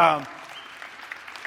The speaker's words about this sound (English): 35 of us, it was awesome. Yep, you can clap for that.